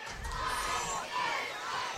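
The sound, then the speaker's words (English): A large stadium crowd at a football game at Ardmore, with the stands full, a good crowd from Elkmont and people standing in the end zones, roars and shouts in a steady, dense wash of voices, holding loud and even for the whole stretch with no single speaker standing out. “Big crowd here at Ardmore. The stands are full, at least all across the way.”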